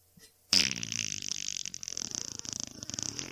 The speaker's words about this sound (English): Will you take us out on like a real slow fart?